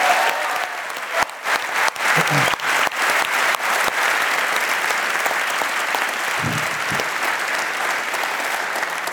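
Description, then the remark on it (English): A live audience at the Royal Theatre applauds special guest Keith Higgins steadily for several seconds, a dense wash of clapping with a few sharper individual claps standing out, holding at a fairly loud, even level throughout. “Big round of applause, please, for Keith Higgins, our special guest tonight.”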